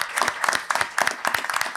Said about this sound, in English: So you deserve that. I thought you should get a round of applause for real.